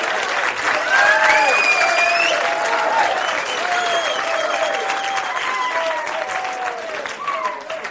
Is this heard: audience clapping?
yes